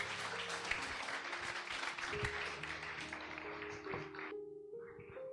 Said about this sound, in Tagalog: Let's give the Lord the loudest clap offering that we give to you.